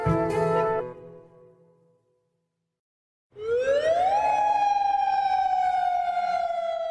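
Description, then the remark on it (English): A loud curfew siren in Jordan, sounded every day at 7 p.m. and the same alarm used in case of war, winds up from a low pitch to a sustained high wail and holds steady, following a brief burst of other sound and a couple seconds of silence. “Every day at 7 p.m., we hear the sound of the sirens. This is the same alarm that would be used in case of war.”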